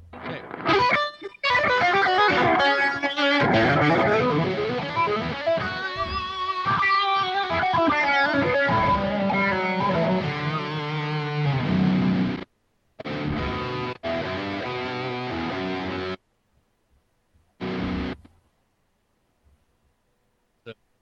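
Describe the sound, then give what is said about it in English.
Electric guitar run through a Tantra synth-like effect pedal, playing loud, buzzy, shimmering chords with sweeping tones, then breaking into choppy rhythmic bursts and a few short stabs before falling silent. “and then I'll slap on that Tantra effect I was telling you about so you can hear how I try to make things a little more synthy.”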